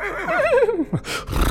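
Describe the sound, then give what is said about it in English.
A horse whinnies once, a loud, quavering neigh that slides downward in pitch, followed by a short breathy snort and some rustling noise. “So Loki becomes a sexy little white female horse.”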